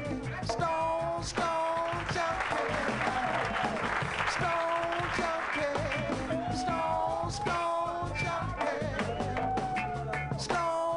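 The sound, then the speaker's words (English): Sustained, loud applause from a crowd fills the whole stretch, dense and steady, with voices shouting and cheering over the clapping throughout. “My fellas, a great big round of applause.”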